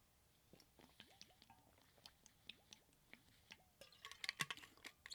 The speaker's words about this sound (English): Let me get a glass of water.